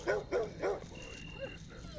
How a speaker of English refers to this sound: Sensing something was very wrong about the situation, Barney began to whine and snarl before finally breaking into several loud barks, alerting everyone to their presence. Barney, no!